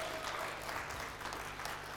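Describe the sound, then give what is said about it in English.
An audience claps steadily for two seconds, a dense, even wash of many hands with no clear individual beats, holding at a moderate, sustained level throughout. “Come on, I deserves a bigger clap than that, guys.”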